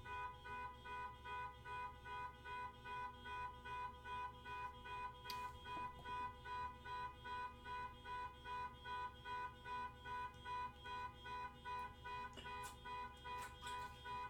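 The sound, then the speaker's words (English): A car horn or alarm blares steadily in a rapid, regular pulsing pattern for the whole stretch, muffled, sounding outside, with no voices. “Dude, fucking fix it. Fix your car.”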